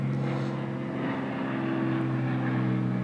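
A steady, loud engine drone from an airplane passing overhead outdoors, with a low humming tone and a broad rushing roar that holds constant throughout, no voices present.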